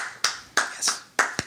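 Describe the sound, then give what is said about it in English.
A few sharp hand claps, about five, in an uneven, unhurried rhythm, fairly loud, like one person giving a brief round of mock applause. No talking. “Applause worthy?”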